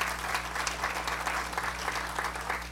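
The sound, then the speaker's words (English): A sustained round of applause from a crowd, dense steady clapping at moderate volume with a low constant hum beneath it and no voices. “Give all of them a round of applause, if you would, please.”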